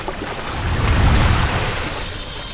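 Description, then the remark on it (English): A steady, full roar of a rushing waterfall with an enormous dark cave just behind it, swelling slightly in the middle and carrying on without any voices. “You want me to enter that enormous dark cave just behind the waterfall?”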